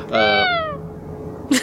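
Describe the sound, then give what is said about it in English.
A human voice imitates a screaming goat: one loud, strained bleating cry that slides downward in pitch and fades, followed by a short breathy burst near the end. “That sounds more like one of those screaming goats, yeah.”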